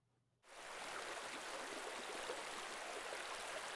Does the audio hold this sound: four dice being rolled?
no